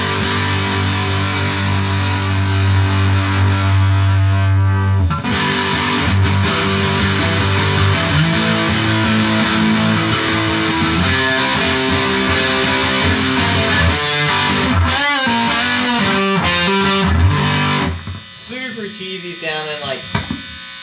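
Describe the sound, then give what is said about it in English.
A heavily distorted electric guitar through a Vox Pathfinder 15R amp with the drive turned all the way up roars with a harsh, buzzy fuzz, sustained chords ringing loud before trailing off near the end, with a brief voice breaking in at the tail. “You can hear how much buzz it has right off the bat when you turn the drive all the way up.”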